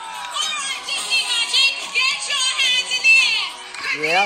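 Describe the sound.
A lively sail-away deck party on a cruise ship: a dense crowd of many voices chattering and shouting together at a steady, loud level, with a few higher cheers rising out of the mix near the end.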